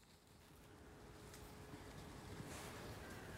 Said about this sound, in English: I don't know if you can hear a sort of distant engine, but it's somebody ploughing. I'm at Bereton, and it's a really dull, dank day.